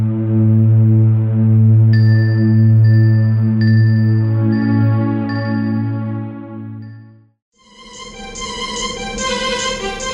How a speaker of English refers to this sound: The synth sound that starts the song has a lot of white noise, like an airy quality to it, reminiscent of the blowing wind sound effect of Freezeezy Peak.